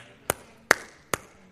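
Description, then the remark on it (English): Three sharp hand claps ring out one after another with brief gaps between them, each a crisp, bright smack with no voices present. “Use your hands to praise. But don't just lift them. Clap them.”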